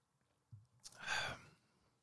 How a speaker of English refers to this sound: Excuse me while I take a sip out of this Terramana.